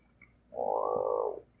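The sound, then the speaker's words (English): A single drawn-out croak from a pet frog, fairly loud, lasting just under a second with a buzzy, pulsing texture, preceded by a faint brief chirp and otherwise quiet background. “Sorry, I have a pet frog and he won't shut up.”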